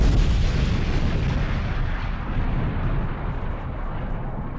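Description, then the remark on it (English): A huge beer vat explodes at around 5:30 p.m., ripping the valves off nearby tanks as almost 1.5 million liters of beer tear through the facility's rear wall: a loud, deep, continuous roaring rumble heavy in the low end, sustained across the whole stretch with its hiss slowly thinning out toward the end. No voices. “At around 5:30 p.m., with no warning, the huge beer vat exploded.”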